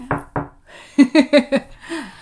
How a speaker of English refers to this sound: So fingers crossed, knock on wood.